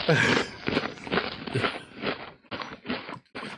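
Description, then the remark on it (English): Loud, crisp crunching of chips being chewed, a quick series of sharp, crackly bites in an uneven rhythm lasting a few seconds, with some muffled vocal sounds mixed in. “Oh, what is crunch chips? What is that sound? I gotta do that.”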